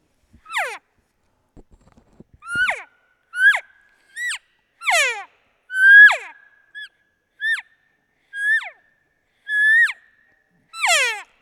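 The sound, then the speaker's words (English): Cow-calf combination elk calls: about ten high, nasal mews with downward slides, some longer and some shorter, spaced roughly a second apart. They are loud and clear, with no talking. “will you hit me with a couple of cow-calf combos?”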